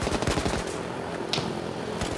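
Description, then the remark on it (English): Rapid bursts of gunfire crackle in the distance, a quick volley of cracks followed by scattered, sporadic shots over a steady background rumble. “Security lights blazed and the sporadic gunfire echoed in the distance.”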